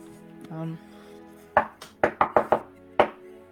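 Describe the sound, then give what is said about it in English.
Sharp knocks on a door: a single rap, then a quick run of four, then one final knock. A short hum of voice comes just before the knocking. “I'll go back down there and I will knock on their door.”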